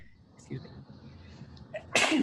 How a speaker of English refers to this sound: excuse me. Very sorry. Bless you. I meant to mute the mic before I did that.